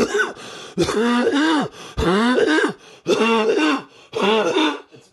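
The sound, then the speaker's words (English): A run of harsh, strained coughing in about five loud bursts, caused by a little spit going down the throat the wrong way, each a rough, throaty hack with choking, gasping edges, separated by brief pauses and no talking. “I just had to cough. A little bit of spit went down my throat in the wrong way.”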